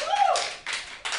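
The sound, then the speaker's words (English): A brief burst of audience applause as the audience answers a prompt to clap if they pee in the shower: many hands clapping together in a dense, crackling wash that swells and fades in short waves, with a faint voice or whoop near the start. “Clap if you pee in the shower.”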